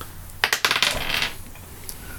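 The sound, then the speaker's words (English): Dice clatter onto a hard table: a quick burst of sharp clicks as they bounce and tumble, a short rattling settle, then one last faint tap, with no talking. The dice roll comes up a 10. “That is a 10 on the dice”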